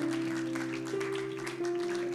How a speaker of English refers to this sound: Can we give God the biggest round of applause right now?